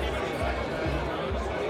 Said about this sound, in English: Maybe you won't even be able to hear it over the crowd noise.